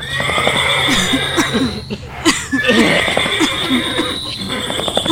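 A horse whinnies loudly, a long shrill, quavering neigh that rises and wavers for several seconds before trailing off into snorting breaths.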